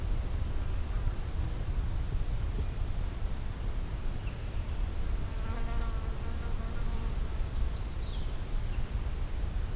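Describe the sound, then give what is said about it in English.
A faint, distant black-throated blue warbler gives a brief buzzy, rising phrase near the end, over a steady hiss of insects and a fly buzzing nearby. “its distant beer bees, which is black-throated blue warbler.”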